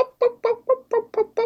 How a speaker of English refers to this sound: It talks. It talks. Guys, this fucking chicken talks.